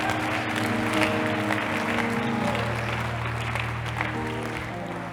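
crowd, audience clapping

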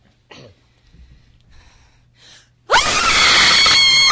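human body sound, loud human scream

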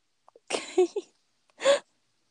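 human body sound, sneeze

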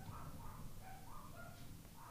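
animal, dogs barking upstairs

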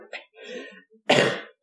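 human body sound, cough

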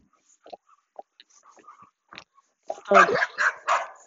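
animal, dog barking

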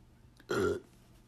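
human body sound, burping

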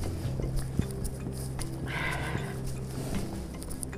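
nature, strong wind blowing outdoors

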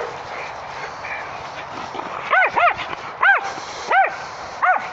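animal, dog barking

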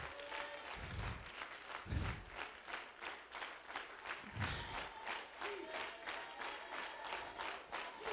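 crowd, audience clapping hands

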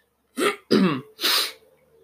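human body sound, throat clearing

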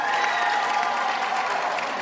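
crowd, thunderous applause

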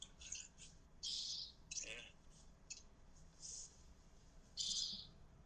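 bird, pet birds chirping

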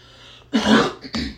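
human body sound, cough

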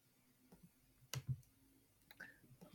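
household object, computer mouse clicking

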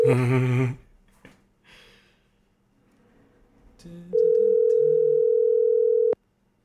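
signal or alarm, phone call ringback tone

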